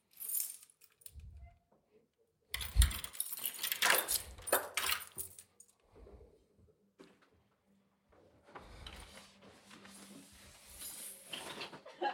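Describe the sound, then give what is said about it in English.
Keys are shaken and jangle in bright, loud metallic bursts, with a couple of clattering pauses between rounds of rattling; no one speaks. “Sometimes if I keep my keys here and shake them, Stormy comes up to the door and meows.”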